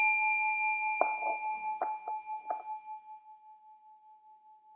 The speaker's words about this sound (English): So I'm going to give a sound of a bell to start.